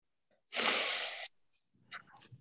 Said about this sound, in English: Yes, I had a sneeze, but it went away.